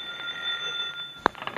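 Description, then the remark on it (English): A telephone rings with a steady, high metallic tone that holds for over a second, then breaks off into a sharp clack and a few quick rattling ticks. “If one of us is stealing the diamonds, the police will answer the phone, someone. I'll get it.”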